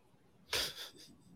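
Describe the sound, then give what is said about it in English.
A single heavy, raspy breath from a sound effects library bursts out loud, a labored huff with a breathy trailing tail before fading to quiet. No talking. “Snarling. Labored breathing.”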